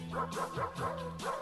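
Dogs bark in a quick, tuneful run of about five yelps that rise and fall like a melody, riding over steady musical backing tones at moderate volume.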